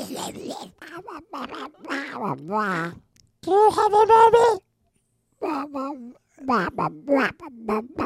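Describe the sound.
A voice mimics the cartoon duck Donald Duck, a raspy, buzzing quack-like babble lasting about a second, loud, set between stretches of ordinary conversational speech.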